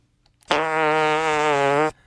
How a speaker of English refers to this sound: that's a fart.